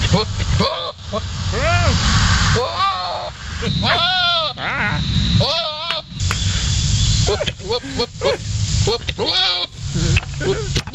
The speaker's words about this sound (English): I will never get used to that. I will never not think that's funny. Ever in life. I could be having the worst day. I could be... just down and just having a bad, depressed day. If you give me goat mating, it is going to cheer me right up, you know?